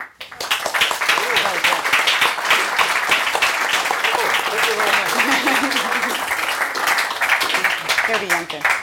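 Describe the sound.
An audience at a London Review Bookshop event applauds an author steadily for about nine seconds, a dense, loud wash of many hands clapping at once, with a few voices faintly mixed into the sound.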